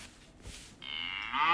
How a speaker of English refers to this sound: Should I see if I've got a little cow sound?